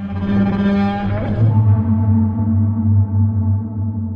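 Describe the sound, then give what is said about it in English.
A huge, drawn-out roar of the movie monster Godzilla, loud, with a harsh, buzzing tone that drops lower partway through and holds steady for about four seconds with no voices. “Probably not that. That was Godzilla. I just really love that sound, and I can't help but imagine the Colossi of Memnon making a groan like that.”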